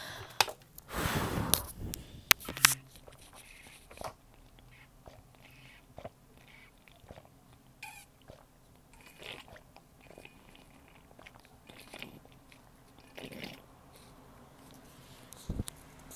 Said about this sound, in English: So yeah, I'm gonna take a sip of water. I haven't drank water all day today, actually.